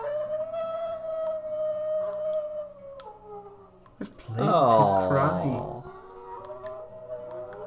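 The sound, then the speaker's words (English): New Guinea singing dogs howl in long, wavering, siren-like tones that slide up and down, rising to a loud, harmonic-rich chorus midway before easing off, with a few brief spoken words. “Here's the Guinea singing dogs.”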